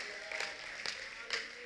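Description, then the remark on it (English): An audience claps in an even rhythm, three soft, sharp bursts about half a second apart over a faint background murmur, giving a clap offering to Jesus. “Put your hands together, give Jesus a clap offering.”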